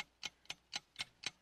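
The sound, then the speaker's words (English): A clock timer ticks steadily during a timed 30-second question round on the John Boy and Billy show, five crisp, evenly spaced clicks about a quarter second apart, fairly quiet with no voices over it. “Start the clock now.”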